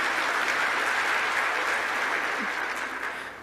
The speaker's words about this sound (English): Polite applause.